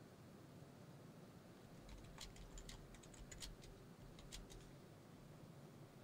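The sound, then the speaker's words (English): Quick, irregular computer keyboard clicks tap out in short bursts for a few seconds over a steady low hum of background noise, with no one speaking. “I'm typing it right now, so y'all bear with me.”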